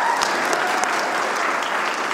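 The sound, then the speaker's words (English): An audience claps steadily to vote for Christmas movies, a dense wash of many hands applauding at an even loudness for a couple of seconds with no talking over it. “The next one is Hallmark Christmas movies. Clap.”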